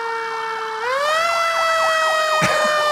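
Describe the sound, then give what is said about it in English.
A loud emergency truck siren wails steadily, its harmonic tone stepping up in pitch partway through, with a brief sharp thump or clank near the end. “Truck 911's here! Clarence, come a running!”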